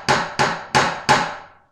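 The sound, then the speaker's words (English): Four firm knocks on a door in a steady, slightly uneven rhythm, each a sharp, bright rap that rings off briefly before the next, with no voices. “It was not long before someone knocked at the door.”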